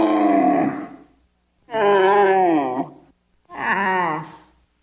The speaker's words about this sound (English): Got a bit of a hump, that one. That's a camel.